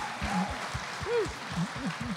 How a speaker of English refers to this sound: Definitely deserves applause for being the first one up. Woo! Yeah.